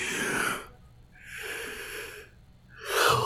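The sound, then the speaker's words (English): A big yawn: long, wheezy breaths drawn in and pushed out in three airy surges, ending with a slightly squeaky, strained stretch. No talking. “This is a big yawn.”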